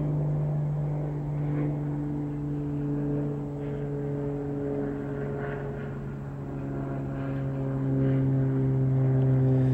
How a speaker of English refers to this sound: As this plane flies away, feel yourself filling with silence as the silence takes over your inner world.